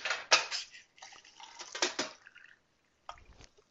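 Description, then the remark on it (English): Hot water heated in a microwave is poured into a teacup, too much of it, with splashy trickling and a ceramic clink near the start, then a pause and a brief final splash or clatter. “Too much water. I put too much water in.”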